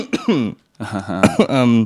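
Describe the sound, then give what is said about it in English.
A person with a persistent, nonstop cough coughs repeatedly, a few harsh bursts mixed with strained, voiced throat sounds, in two loud clusters separated by a brief pause. “And I apologize if this is disturbing to anyone. That's why we gotta have ears. A cough button.”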